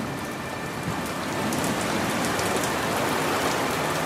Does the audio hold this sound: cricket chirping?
no